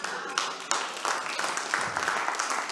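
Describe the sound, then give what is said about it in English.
An audience breaks into steady applause, a dense crackle of many hands clapping together at moderate volume, sustained without pause for a few seconds. “If that's all I need to do to get an applause, brilliant.”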